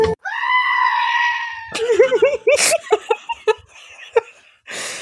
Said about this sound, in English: a screaming goat.